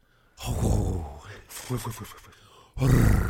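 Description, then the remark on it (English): A voice imitates a flock of pigeons in a city or park taking off when someone stomps: a rough, breathy burst, then a quick fluttering run of puffed pulses like beating wings, ending in a loud low growling rush. “So if you've ever been like in a city or a park where there's tons of pigeons... And somebody stomps, if you're with a kid, they love to do that.”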